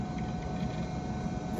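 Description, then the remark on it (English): The hard drive of a vintage Macintosh computer whirs steadily with a faint high whine, soft irregular mechanical clicks and ticks scattered over the hum as it loads. No one speaks. “We've got some good clicking going on.”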